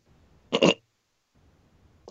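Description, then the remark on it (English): A single short, sharp sneeze bursts out, a quick two-part explosive puff, followed by near silence and faint background noise. “Bless you.”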